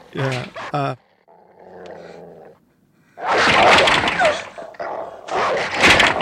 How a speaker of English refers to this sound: And here's that wonderful, irrational, evil dog, which, I assume is a reference to the Hound of the Baskerville.